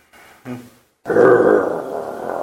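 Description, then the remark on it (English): A person imitates a dog's snarl: a couple of short guttural grunts, then a loud, rough, sustained growl that rumbles steadily for over a second. “Okay, when you reach out to touch him, the dog snarls.”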